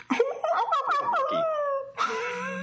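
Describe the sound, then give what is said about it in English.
A person imitates a whimpering dog: a string of high, wavering whines that slide downward for about two seconds, ending in a breathier, rougher whine. “I don't think hounds sound that way, but you got a better.”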